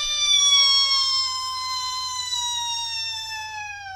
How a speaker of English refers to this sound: The mad squirrel laughed slowly and delightfully. Then it reared up and screamed!